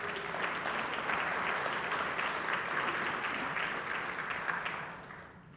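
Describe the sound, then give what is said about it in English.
An audience breaks into sustained applause, giving the Lord a hand clap, a dense, even patter of many hands clapping that holds steady for several seconds before tapering off near the end. “So let's just give the Lord a hand clap on that.”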